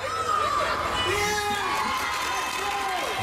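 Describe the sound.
A watch party crowd at the Junior Tennis Champion Center in College Park cheers on Tiafoe's tennis match, shouting continuously with many excited voices, including high-pitched children's yells, forming a steady loud roar of whoops and calls throughout.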